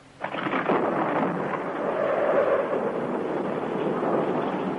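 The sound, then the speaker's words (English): A thunderstorm sound effect in a radio ad, depicting a North Atlantic storm pounding New York City in March 1967: a sudden rumbling crack of thunder swells into a steady, loud roar of rain and wind that carries on without pause, with no voices. “New York City under the pounding of a North Atlantic storm.”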